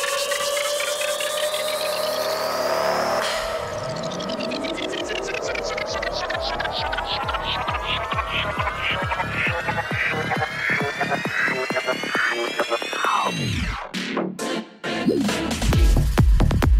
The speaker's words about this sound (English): So this is O Fortuna. And at 50 seconds in, I bring in song two